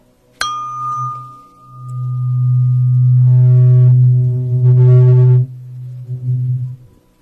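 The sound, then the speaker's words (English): A buzzing electronic hearing aid test tone, played for the right side, begins with a sharp click, holds a steady low hum with faint higher overtones, swells louder midway, then wavers and fades out. “It's like a buzzing sound.”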